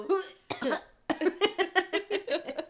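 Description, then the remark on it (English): A person makes a rough hacking cough imitating a cat bringing up a hairball: a couple of harsh bursts, then a quick, rhythmic run of about nine gagging hacks. “I just try to channel like a cat hurling like a hairball.”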